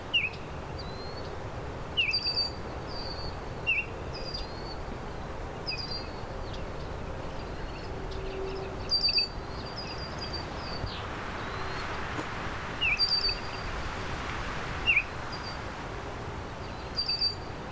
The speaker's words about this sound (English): Red-winged blackbirds, and this Baltimore oriole still singing.